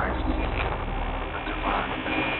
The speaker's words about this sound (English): Oh, isn't that great? Like static, like we're getting a signal, a broken up signal, you know, from beyond or something.